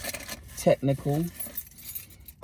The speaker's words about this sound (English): My keys.